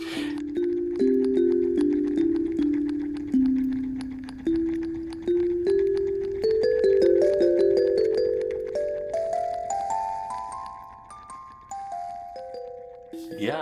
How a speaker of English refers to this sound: it takes the audience over to the belfry, where we will hear a work of Nathan's that you've written for the bell